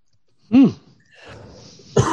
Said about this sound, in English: This is an allergy cough, not a COVID cough.